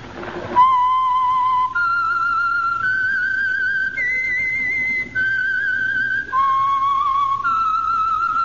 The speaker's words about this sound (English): And for Sunday evening listening pleasure, the signal to listen for is this whistle that identifies the Signal Oil program, The Whistler.